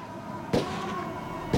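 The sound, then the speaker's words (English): Two sharp gunshots crack out inside a house on Stony Brook Drive in Fort Wayne, Indiana, just after 9 p.m. on a freezing night, about a second apart, each a sudden loud bang that dies away quickly, over a low, steady background hum with no one speaking. “Just after 9 p.m., the quiet was shattered by the sound of gunshots inside 6208 Stony Brook Drive.”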